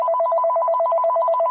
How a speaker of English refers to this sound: And after some time, my mobile phone rang.